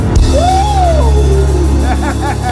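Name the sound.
audience shouting in response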